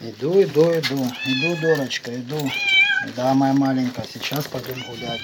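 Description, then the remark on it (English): A domestic cat living alone in the village of Malatonarivka meows several times in close succession, loud, with long drawn-out cries that rise and fall in pitch and have a strained, complaining tone. “But I was upset that there's this cat living in Malatonaravka who he apparently cares about, but who is living with no human being and doesn't see a human for 3 days at a time.”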